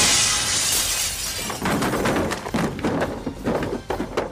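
Window glass shatters loudly in a bright crash as someone crashes through the window, followed by a scatter of tinkling shards and dull thuds as debris falls and settles.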